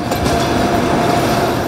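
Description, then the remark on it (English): A passenger train carrying wives and children pulls away in Odessa, rumbling steadily with a loud continuous roar of wheels and machinery and a faint metallic whine running through it, and no voices. “linger outside the window as long as they can, savoring every last moment before the train, carrying their wives and children, pulls away.”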